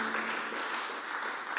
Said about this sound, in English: Give the Lord a good clap offering, someone.